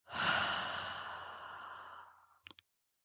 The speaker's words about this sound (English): Ready? Three quick sniffs. And a long exhale.